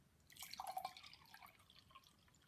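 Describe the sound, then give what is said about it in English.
Trader Joe's organic 100% melon juice is poured into a cup: a short, soft splashing trickle, strongest in the first second and then tapering into quieter drips. No one speaks. “So I've gotten a cup, and you know what's gonna be in that cup? Some Trader Joe's organic 100% melon juice, cause melon.”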